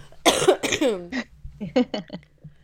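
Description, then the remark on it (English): A person coughs several times, harsh hacking bursts in quick succession, then a short pause before a couple more throaty coughs. “oh, hang on, I'm going to cough.”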